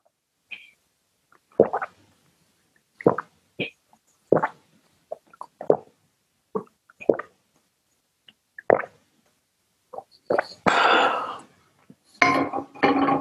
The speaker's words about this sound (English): Were you emphasizing your swallow noises that time?